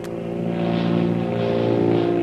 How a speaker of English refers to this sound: after a speedy takeoff, the powerful seaplane rapidly climbs into the air, thousands of feet above the blue Pacific Ocean.